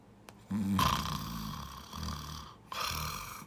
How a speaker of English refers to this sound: Is that what you hear? Yeah. He wakes himself up when he snores.